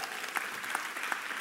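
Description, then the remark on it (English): An audience applauds the speaker's mention of his 18-year wedding anniversary with steady, dense clapping that holds an even level from start to finish, a continuous wash of hand claps with a few sharper claps popping out. “The applause is appreciated, but it is not enough to measure the Richter scale for how much she loves Jesus and was able to love me through that.”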